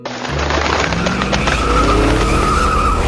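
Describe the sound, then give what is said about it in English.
The Batmobile's engine roars loudly as it pulls away, its tires squealing and skidding in a sustained, high-pitched screech over the rumbling motor. No one speaks. “Soon, the Dark Knight arrived at Gotham Harbor in the Batmobile.”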